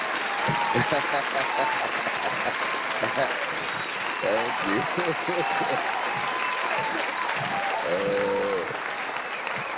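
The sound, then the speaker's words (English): Steady, dense audience applause fills the whole stretch at a fairly loud, even level, with voices speaking over the clapping at several points. “Well, I'm going to give your son and everyone that has supported you an applause that they will keep on.”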